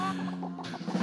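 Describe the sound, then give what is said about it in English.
A brief burst of a looped novelty chicken song, with clucking sounds over steady tonal backing that turns brighter and noisier halfway through, fairly loud with no talking. “How many times do you think the chicken song is looped now?”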